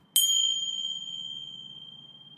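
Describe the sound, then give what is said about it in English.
A single bright bell chime signalling a quick break strikes sharply, then rings out with a long, slowly fading tone over a faint low hum. “That bell was just to alert you that we're going to take a quick break so I can tell you about the different ways to listen to and engage with this podcast.”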